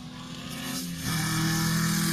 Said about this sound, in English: The car sounds great.